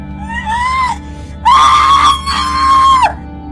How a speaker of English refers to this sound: Why are you screaming? I haven't even cut you yet.